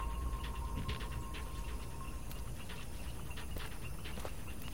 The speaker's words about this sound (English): Eventually, the silence is broken by the wet slapping of familiar footsteps.